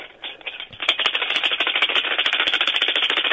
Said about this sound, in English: How's that? It's not very good tambourine playing. Really? Yeah, it was terrible tambourine playing. You can't just shake it like a lunatic.